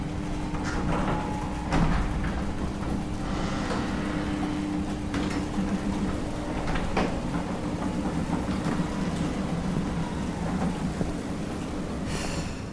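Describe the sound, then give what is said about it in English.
A heavy garage bay door, left unfixed, slowly strains and groans open in a long, loud, continuous rumble with a low grinding drone and scattered metallic creaks, with no voices. “The door slowly opened, strained and groaning.”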